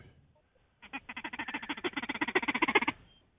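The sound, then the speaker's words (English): A turkey gobble made on a shaker call: a rapid rattling run of about twenty throaty pulses, swelling louder toward the end and then stopping abruptly, with no talking over it. “It sounds like he's using a really bad gobble call. I think it's one of them shaker chuckers.”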